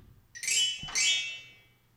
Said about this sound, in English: God, I love how we got these new, these new phone ringers installed. So the audience can hear what's going on.